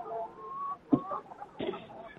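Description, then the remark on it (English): Several chickens cluck and warble together, with a few sharper, louder squawks cutting through a steady flock chatter; no one speaks. “Not hear all those chickens?”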